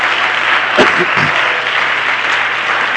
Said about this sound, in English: Give the Lord a hand clap of praise right now.